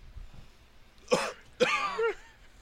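A man coughs twice up close, two harsh, raspy bursts, the second longer and trailing into a strained, voiced wheeze, with quiet room noise before and between.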